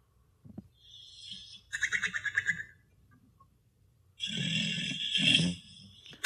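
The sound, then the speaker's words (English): A sleeping dog snores: thin, whistling breaths, then a rapid fluttering rattle, followed after a pause by a longer, louder wheezy snore. No one speaks. “That's a dog having a snooze.”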